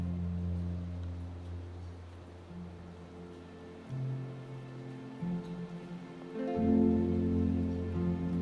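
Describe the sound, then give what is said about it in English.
Steady rain patters softly outside, a gentle, continuous hiss of drops beneath a low, sustained musical drone that shifts pitch a few times. “Listen to the gentle rhythm of the raindrops outside.”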